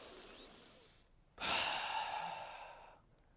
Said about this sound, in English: That's awesome. People have been breathing like that for thousands of years, and it's still amazing.